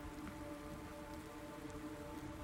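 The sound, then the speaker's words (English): Heavy rain pours down outside a front door in a steady, dense hiss of drops drumming on a surface, continuous and even throughout with no voices present. “So you pull the bolt back and open the door, and a torrent of rain kind of comes in at your boot level.”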